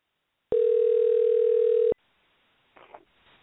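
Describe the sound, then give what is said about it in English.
A telephone ringback tone on a call line: one loud, steady electronic burst lasting about a second and a half, followed by near silence with a faint rustle. “It's ringing.”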